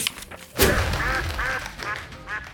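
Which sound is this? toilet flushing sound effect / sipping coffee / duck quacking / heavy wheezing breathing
duck quacking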